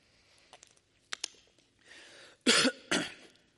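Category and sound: human body sound, coughing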